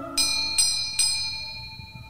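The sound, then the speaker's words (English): A bright bell is struck three times in quick succession, signalling the start of the opening race at Ascot, each strike ringing out with sustained metallic tones that overlap and slowly fade. No one speaks. “Hark, a bell is ringing, they are springing forward.”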